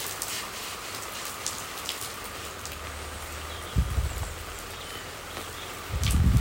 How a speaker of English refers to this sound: Something quite strange about being stood in a tent with the rain hitting you, the roof above you, and then watering inside it with the hosepipe.